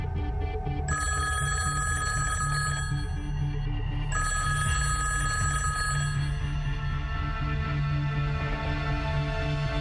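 A telephone rings in repeated bright electronic bursts, fairly loud, over a low steady hum and a faint background voice; a colleague's call to the head of the FBI's China counterintelligence unit, one day in September 1982.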